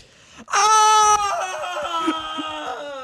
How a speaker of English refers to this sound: I don't want to have to scream loud enough to pick up on your mics too, but I will. I've created a power vacuum. This is a little what it would sound like.